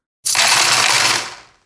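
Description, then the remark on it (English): Coins spill and clatter in a dense metallic jingle lasting about a second, ringing out and fading as they settle. Fairly loud, with no voices. “Coins are a type of money.”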